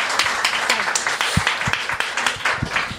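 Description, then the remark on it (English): An audience claps steadily as a volunteer is called up to the stage, a dense, even wash of many hands with scattered sharper slaps, moderately loud and continuous for the whole stretch. “Clap them up.”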